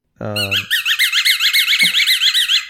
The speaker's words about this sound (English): That was the squeaky ball. The dog loves things that squeak and loves balls. So I found the ball that squeaks.